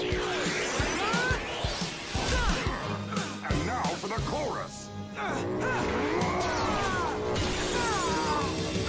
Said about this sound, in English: Ooh, shattered helmet. No, my helmet.